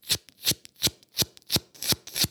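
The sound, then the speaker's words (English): A voice imitates a free diver packing air into the lungs: seven quick, hissy gulping gasps in a steady rhythm, roughly three per second, fairly loud, with no talking. “They are like gasping the air inside, like packing it, sounding like this.”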